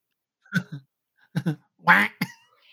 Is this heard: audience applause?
no